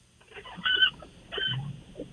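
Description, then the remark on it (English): A tree branch coming down and scratching against something at a house, creaking in two short squeaky, strained bursts with a pause between, moderately loud, with no talking. “And that was the scratching of a tree branch just coming down against”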